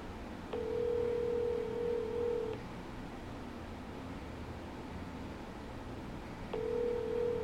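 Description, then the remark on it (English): A phone line rings back with a steady tone while calling a former church missionary, sounding for about two seconds, then silence, then the ring starts again; muffled by a faint background hiss, no voices. “Call him up.”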